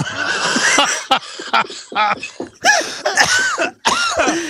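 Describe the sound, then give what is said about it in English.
A person coughs and clears their throat repeatedly, a series of harsh, raspy bursts separated by brief pauses, fairly loud. “I need a cough button.”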